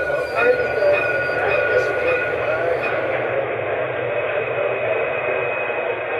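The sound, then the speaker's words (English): A Dublin light rail tram runs steadily, its constant rumble carrying a high electric motor whine, with indistinct voices murmuring underneath throughout. “From an old-style form of transport, we go to Dublin's most modern form, the Lewis.”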